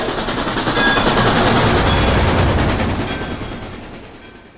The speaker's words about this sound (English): All aboard. Sounds like the train is ready.